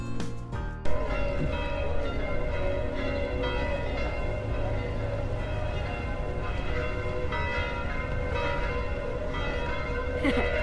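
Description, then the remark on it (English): Church bells of Sorrento peal continuously on a sunny Sunday morning, heard down by the marina. Their overlapping metallic tones ring out loud and full for several seconds, layered with lingering resonance, and no voices are heard. “The bells of Sorrento, Sunday morning.”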